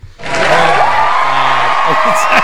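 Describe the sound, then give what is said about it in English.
A sudden burst of inserted applause and cheering for a Best Original Score award at the 'Wrecked Oscars' kicks in and holds steady and loud, a dense wash of clapping with voices whooping and shouting on top. “Is this where you're going to insert applause? Oh, 100% applause.”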